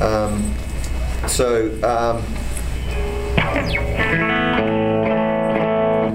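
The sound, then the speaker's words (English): A clean electric guitar plays a run of sustained, slightly bending notes with a little compression giving an even attack and a little delay trailing each phrase, steady throughout. “So this is that tone, that clean tone, with just a little bit of compression and a little bit of delay.”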